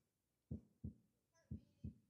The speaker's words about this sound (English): Heart beating. When's the last time you stopped and thought about your heartbeat?